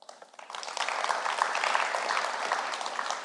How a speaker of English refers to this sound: One, your worship band's just awesome. Y'all shouldn't take that for granted. They do a great job. That was amazing worship, and I know it touched my heart, and I think you guys just need to give them a round of applause.